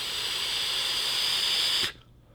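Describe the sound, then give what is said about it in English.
A steady hiss from a 0.2 coil head in an e-cigarette during a pull at about 35 watts with the airflow turned off, with faint crackling underneath, lasting about two seconds before cutting off abruptly. No one speaks. “Oh, I can hear it barely crackling in there. Just barely crackling.”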